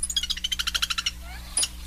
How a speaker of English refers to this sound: That would be a Lewis's woodpecker. What a funny call for woodpecker, huh? It is kind of. Yeah, well, it's a funny woodpecker, right? It doesn't even really even peck wood generally. No. It's kind of gleans and kind of does a fly-catching thing,